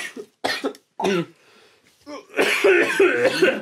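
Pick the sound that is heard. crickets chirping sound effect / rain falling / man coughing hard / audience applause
man coughing hard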